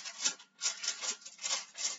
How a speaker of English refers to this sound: And she's just pulled out this little, like, Ziploc dairy bag of Jaffa's, and I am going to fucking destroy these. Mm-hmm. This is what they sound like.